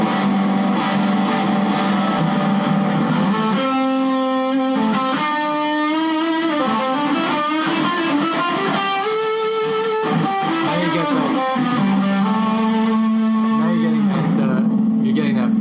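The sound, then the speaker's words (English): A loud, heavily overdriven electric guitar plays sustained, gritty chords and bending notes through an amplifier's reverb, with the dwell turned up and everything cranked, filling the whole stretch with dense, saturated tone and no pauses. “All the way up to where you can kind of start cranking everything.”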